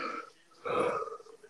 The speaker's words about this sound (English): Ooh, damn, that was a strong yawn.